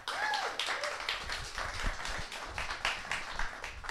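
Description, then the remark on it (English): A comedy audience applauds steadily to welcome a comedian, dense overlapping claps filling the whole stretch at a fairly loud level, with a brief whistle near the start. “So, everybody give a big round of applause”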